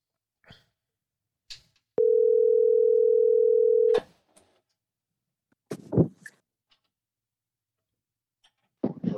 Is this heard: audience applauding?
no